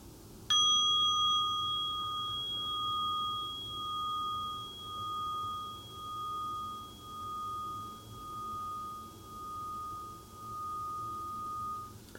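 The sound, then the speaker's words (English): A single mindfulness bell is struck once to begin a pause of three shared breaths, ringing out with a clear, sustained tone that slowly fades, its resonance gently pulsing as it decays over about ten seconds. “So I'll invite the bell now, and we can breathe a bit to bring us back to the present.”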